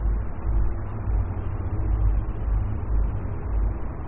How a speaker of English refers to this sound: So hear it, yeah, hear the traffic right there.